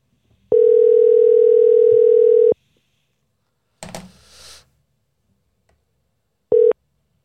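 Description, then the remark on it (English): A phone line rings out unanswered: a loud, steady electronic tone holds for about two seconds, a brief clattering noise fills the pause, then the tone starts again and cuts off. No one speaks. “Damn, nobody answers their phone anymore.”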